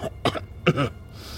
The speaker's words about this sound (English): Al laughed again, and it was cut short by a coughing fit.